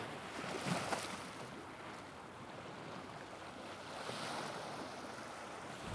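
Waves wash steadily onto a shore, a continuous roar of surf that swells louder twice as breakers roll in, with some wind noise and no voices.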